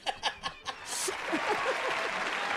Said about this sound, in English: And applause.